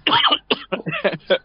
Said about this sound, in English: Excuse me. Got a bit of a cough. Yeah, a bit of a frog then